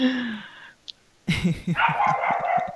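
A neighbor's dog barks in a quick burst of several yaps, following a short whine-like tone and a brief click, with the barking continuing in a rapid rhythm.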